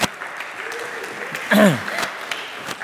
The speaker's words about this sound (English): So can we give this team here a big round of applause?